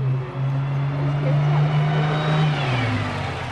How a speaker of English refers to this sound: That's a sound bus riders in Los Angeles say they're sick of hearing. A bus so crowded it can't or won't stop, leaving them stranded.